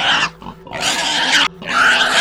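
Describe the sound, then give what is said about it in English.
A large pig in a barn squeals loudly in three harsh, strained bursts with brief gaps between them, raspy, with low grunting undertones. “"Holy shit," I say, barely managing to hear myself as the biggest pig that I'd ever seen starts to squeal and grunt loudly.”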